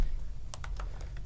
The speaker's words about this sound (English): Somebody talk while we don't so we don't have dead air while I'm typing this.